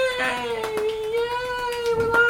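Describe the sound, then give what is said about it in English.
A single cat gives one long, drawn-out meow, holding a steady, whiny pitch for about two seconds. It is loud, with faint background noise and no talking. “One cat in the background.”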